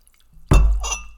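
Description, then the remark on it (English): A short burst of liquid pouring and splashing into a glass, starting abruptly after a moment of quiet and running for under a second with a bright, fizzy edge. “Pour another one.”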